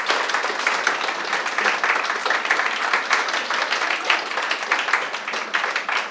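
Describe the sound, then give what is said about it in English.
A crowd gives an artist another round of applause, clapping steadily for about six seconds, a dense, even patter of many hands clapping at once with no voices standing out. “Can we collectively give the artist another round of applause?”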